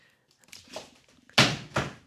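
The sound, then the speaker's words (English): A chair is knocked over by a cat with a loud wooden crash and a second clattering thud, preceded by a few softer bumps and scrapes; no one speaks. “My cat just knocked over my chair.”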